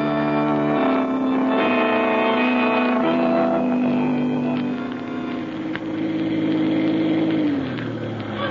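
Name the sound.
car engine running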